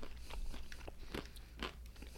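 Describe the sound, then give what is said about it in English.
A crunchy snack is chewed, with several sharp, crackling bites in an uneven rhythm over a low steady background hum, and no talking. “I got chew and swallow.”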